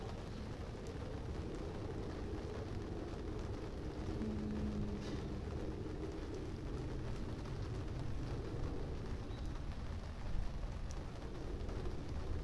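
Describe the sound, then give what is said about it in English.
Steady, heavy tropical rainfall pours down in a dense, unbroken hiss with a deep rumbling undertone, holding an even loudness throughout with no voices present. “Tropical rain so delicious.”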